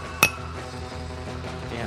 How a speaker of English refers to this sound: at some point is going to shatter those glasses, I swear. You hit that thing so hard.